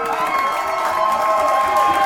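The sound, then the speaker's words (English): A loud, dense crowd roars, cheers and chants continuously, urging that a bearded Scottish Terrier be made the winner of a mustache and beard contest, many voices blending into a sustained, energetic wall of sound with rising shouts. “And that's when the crowd took over. Give it to the dog! Sherman! Sherman!”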